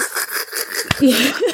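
One heavy, harsh cough bursts out abruptly amid a low hiss, trailing into a brief wheezy, voiced rasp.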